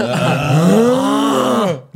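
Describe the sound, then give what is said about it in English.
A voice imitates a father's loud snoring: one long, rough, drawn-out groaning rumble that rises slightly in pitch and lasts nearly two seconds, forceful, then stops abruptly. “Your dad's snoring.”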